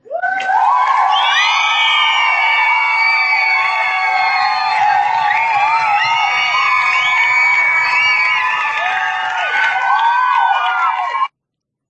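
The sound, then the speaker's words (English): A large crowd cheers and whoops loudly and continuously for about eleven seconds, many high voices shouting over one another with no pauses, then it cuts off abruptly. “I'm giving Roddy Cat some time to fix whatever he's working on with extended applause.”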